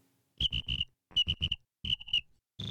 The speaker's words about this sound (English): Can you put crickets in there? Absolutely. I was thinking that as it was happening. Cricket moment. I heard the crickets in my mind.